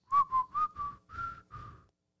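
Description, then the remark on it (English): Someone whistles a short tune, six distinct notes in a steady rhythm, the last two held a bit longer before the melody trails off into silence. “What's another whistling rock song?”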